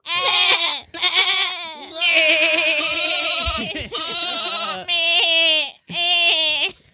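Sheep bleat over and over, about six loud, wavering cries in quick succession, filling the whole stretch with only brief gaps between calls.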